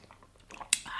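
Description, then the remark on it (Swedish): A quiet sip of coffee from a cup: soft mouth noises, then a brief sharp slurp near the end, followed by a faint airy swallow. “Jag tar en klunk kaffe.”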